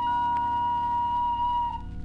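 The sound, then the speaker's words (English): A factory lunch whistle blows one long, steady, high-pitched tone that holds for about two seconds over a low mechanical rumble, then begins to waver and fade at the end. “There goes the lunch whistle.”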